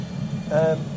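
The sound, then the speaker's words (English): A Jet Provost's jet engine starting up: a short, rising high-pitched whine with layered tones swells midway over a steady low engine rumble, then fades back under the drone. “Down over here, throttle, radio button, jet provost firing up over there.”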